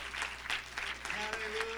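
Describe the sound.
An audience claps their hands to the Lord in praise, a dense, continuous patter of applause that swells in soft waves, with a faint sustained tone and murmuring voices underneath.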